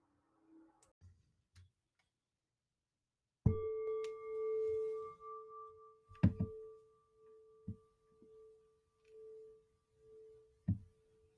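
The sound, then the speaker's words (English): A meditation gong is struck once to mark the start of a guided audio meditation and rings out with a steady, pure tone that hums for several seconds, while a few soft clicks and light taps sound underneath and around it. “The meditation starts and ends with a gong.”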